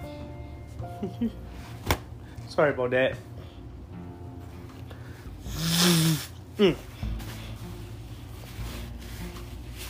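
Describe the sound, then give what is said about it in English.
Someone blows their nose once: a single honking, breathy burst lasting about a second. A man speaks briefly before and after it. “I need to blow my nose.”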